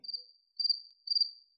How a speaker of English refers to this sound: That was it. We got to insert cricket sounds.